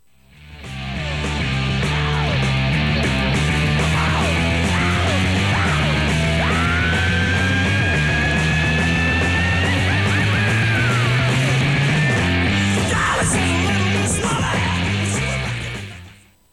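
A rock singer lets out a long, piercing high-pitched scream that climbs and holds over loud, distorted band music, sustained for several seconds in the middle of a dense, raucous mix.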